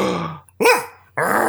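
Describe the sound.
A person imitates a dog barking with about three loud vocal woofs in quick succession, the middle one rising and falling in pitch, with no other talking.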